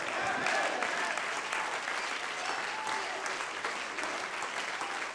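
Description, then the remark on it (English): An audience, called on to clap their hands and shout "It could happen," claps in a dense, steady wash of applause that holds at an even loudness for about five seconds, with scattered voices faintly mixed into the clapping. “Clap your hands and shout, "It could happen."”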